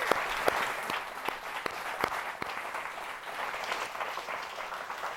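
An audience claps steadily, a dense patter of many hands with a few sharper individual claps standing out, sustained at an even level without any talking.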